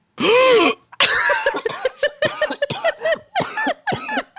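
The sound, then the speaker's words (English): A loud coughing fit: a strained, choking hack followed by a long string of rapid, raspy coughs and throat-clearing bursts with no talking. “goes into a violent coughing fit because of the heinous things he sees.”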